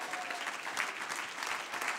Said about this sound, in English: Oh, somebody clap your hands unto the Lord.